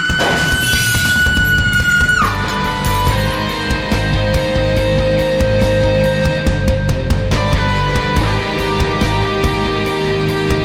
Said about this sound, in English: And I heard glass breaking.